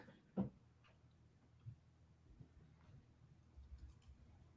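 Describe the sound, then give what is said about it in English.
Soft, scattered keyboard typing: a few faint clicks and taps at uneven intervals, with one sharper key strike near the start, over a quiet low hum and no talking. “I was just typing up something.”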